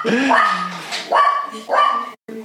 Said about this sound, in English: So you got a dog too. Yeah. Sorry, she's going. So it's all right.